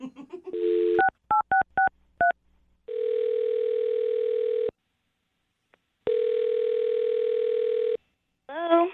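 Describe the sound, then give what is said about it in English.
A rapid run of five or six electronic keypad beeps as a woman's phone number is dialed for a call on the radio show Brooke and Jubal in the Morning, then two long, steady ringback tones separated by a pause of silence. “I'm gonna dial her phone number right now, man.”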